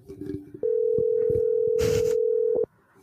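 A single loud, steady two-second burst of an outgoing phone call's ringing tone, clear, with faint clicks and rustling before it and a brief hiss partway through.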